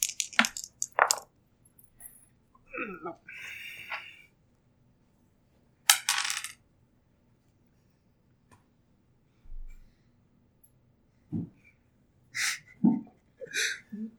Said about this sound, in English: So I rolled a d4 to decide whether it would be screaming, crying, dancing, or furiously masturbating. I rolled a 4.